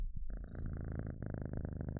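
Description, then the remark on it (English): A cat named Olive purrs, a steady, rumbling purr with a fast rhythmic flutter that continues unbroken for a couple of seconds, with no voices. “Can we get a purr check on Olive real quick?”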